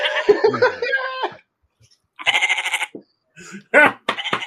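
Several goats bleat in overlapping, wavering cries, a loud drawn-out call followed by shorter bursts and a few quick bleats.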